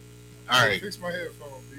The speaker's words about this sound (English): Fix my headphones, dude. Something going on. Yeah, I think we got some line interference.